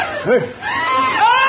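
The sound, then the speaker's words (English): High, wavering cries from a few overlapping voices in a village during a thunderstorm with lightning, rising and falling in pitch. The panicked shrieking is fairly loud, with no clear words, and lasts only a moment. “Lightning and the thunder and the screaming had brought the wild elephant to fever pitch.”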